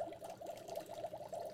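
A mist maker bubbles and gurgles steadily in a potion liquid just poured into it, a continuous watery burbling with small fluctuating pops, fairly quiet, with no one talking.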